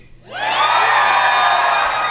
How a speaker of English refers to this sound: I heard some of them stop cheering. I heard it. I don't blame. I heard it. I didn't like it. Just the guys cheered louder that last one.